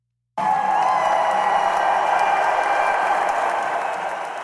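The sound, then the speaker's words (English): A loud crowd erupts at once into sustained cheering and clapping, with whoops and shouts blending into a dense roar that holds steady for several seconds before easing slightly. “Clapping, wooting, shouting.”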